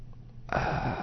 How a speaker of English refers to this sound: That's me heavily breathing into the microphone because I'm so tired of this open carry crap.